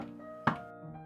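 A single dull, solid knock on the door of the Pacific Club lands midway, sharp at first and fading quickly, over a steady low tonal backdrop with no talking.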